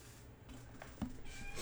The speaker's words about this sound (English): If you could hear those meows in the background, that is my little cat. I will be right back to go grab her.